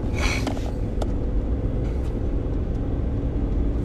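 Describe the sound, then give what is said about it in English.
Steady low engine rumble fills the cabin of a moving truck, constant, with faint rattles and a brief higher whine early on, no voices present. “It's all the same last name of the people that own the truck we're in right now.”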